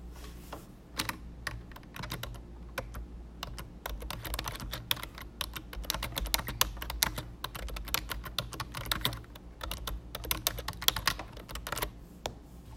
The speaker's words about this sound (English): You hear the typing, it's 'cause I am typing while recording this episode.